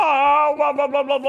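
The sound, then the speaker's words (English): A person's voice imitates the yowl a cat makes while defecating: a sustained, nasal, mid-pitched wail that breaks into a rhythmic, wavering series of about five pulses before it ends. “You know that weird sound the cats make when they just go.”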